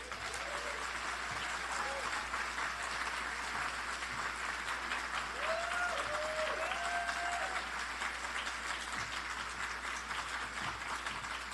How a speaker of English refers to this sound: That was fantastic. Can we give him another round of applause